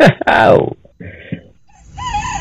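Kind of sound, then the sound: bird, roosters crowing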